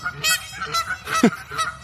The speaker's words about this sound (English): the geese are having a time this morning. Hey, guys.